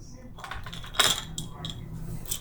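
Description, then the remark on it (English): A bunch of keys jangles in several short metallic bursts, the sharpest clink coming about a second in, followed by lighter rattles as they are passed along. “Could you give me the keys?”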